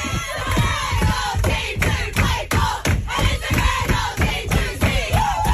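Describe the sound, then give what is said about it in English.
A sports team sings and chants together loudly on the team bus after a win, a rowdy, spirited sing-along with rhythmic pulses and raised shouts running continuously throughout. “Speaking of which, I don't know if you've caught any of the footage going viral of them on the team bus having a sing-along after their last win.”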